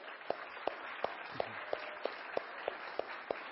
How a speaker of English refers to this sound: So if you're here in the service and you see your name on the board, would you stand and remain standing for just a moment while we clap and welcome you in this way?